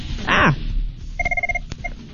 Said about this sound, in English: Oh, hello. And take that phone call. Yeah, apparently. Let's just take the phone call.